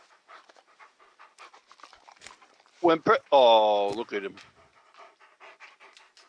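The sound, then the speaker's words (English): A puppy pants loudly in a short, breathy, voiced burst of about a second and a half midway through, with quieter conversation continuing before and after. “Look at that face. It's my puppy.”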